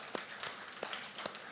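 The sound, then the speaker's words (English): An audience claps together to celebrate those who have just prayed to follow Jesus, a soft, steady patter of many hands with a few sharper claps standing out, fairly quiet, with no talking. “Yes, come on, we can clap for that.”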